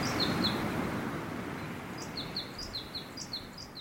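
A bird sings a string of high, repeated chirping notes that ride clearly above a constant, low, rumbling roar of wind in the trees, with a brief pair of calls first and a rhythmic run later.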